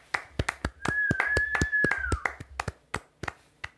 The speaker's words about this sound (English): can we have a round of applause for Joss Whedon?